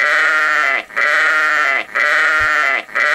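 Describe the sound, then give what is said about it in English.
A sheep bleats loudly three times in a row, each long, wavering, nasal cry separated by a brief pause, with no talking over it. It is a 'sheeple' sound clip, an old staple of the Savage Nation program, played again on the show. “The sheeple sound is really called for today on the program to lighten things up and show people what they become.”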